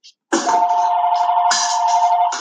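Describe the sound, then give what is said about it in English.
A telephone that has been taken off the hook rings with a loud, steady mid-pitched electronic tone that holds for about two seconds, preceded by a short click and briefly roughened by a burst of noise midway. “Why is it still ringing if I took it off the hook?”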